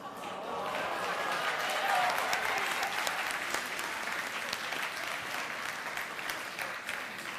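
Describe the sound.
A live audience breaks into sustained applause and cheering at a story about the speaker's wife being shot in the back with a water gun, a dense wash of clapping that holds steady and loud for several seconds with scattered voices mixed in.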